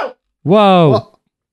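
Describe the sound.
A single loud, voiced sneeze lasting about half a second, tonal and slightly rising before cutting off with a short breathy burst, preceded by a faint snatch of a voice.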